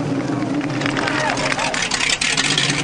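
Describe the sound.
Loud, steady roar of police cars approaching, engine noise filling the whole stretch, with a busy murmur of voices mixed underneath.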